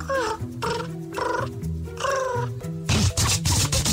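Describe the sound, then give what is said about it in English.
On a live radio show, someone imitates a pigeon with a series of drawn-out, wavering vocal calls that sound more catlike than cooing, ending in a louder, rougher, breathier burst. “Wait, wait. That doesn't sound like a pigeon.”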